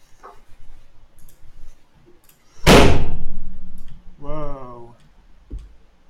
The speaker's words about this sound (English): Whoa. Eh? That was the door.